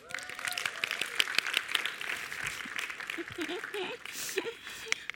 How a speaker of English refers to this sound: So can my guys come to the, come on, let's clap for them.